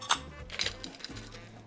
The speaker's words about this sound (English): I want you to fill your glass halfway with your crushed ice. Okay.